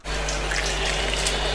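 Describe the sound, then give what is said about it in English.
A steady stream of water splashing and trickling continuously, like someone urinating, with a low hum underneath and no voices. “Oh, that is some wee porn.”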